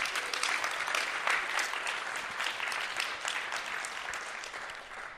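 Steady audience applause, a dense wash of many hands clapping at once that holds at an even level for several seconds and eases slightly near the end, with no voices.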